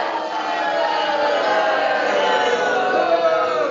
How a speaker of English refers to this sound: I know he's back because they're booing him.